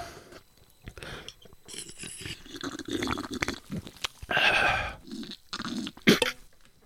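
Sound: sipping an energy drink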